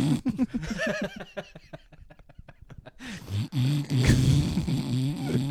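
A man snores in loud, low rattling bursts, a fluttering throaty buzz that breaks into rapid pulses before swelling again into a rougher, noisier snort.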